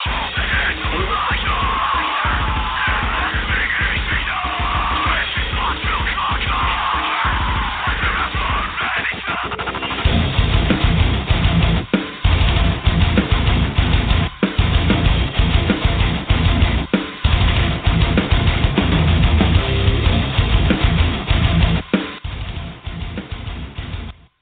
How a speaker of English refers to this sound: Some head-banging music.